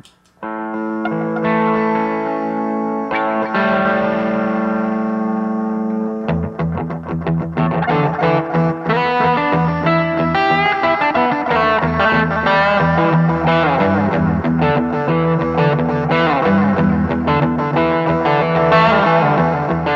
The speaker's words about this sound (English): I do currently I have this pedal by Endangered Audio Research, the AD4096. And those guys are based out of Asheville, I believe Asheville, North Carolina. Okay. And it's you know, it's a delay. It's like a Bucket Brigade delay pedal.